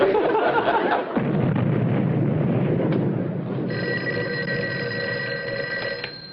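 A deep, rumbling blast from blasting on the underpass fades into a low roar, then an old-fashioned telephone bell at the sheriff's office starts ringing, a steady metallic trill lasting a few seconds. No one speaks.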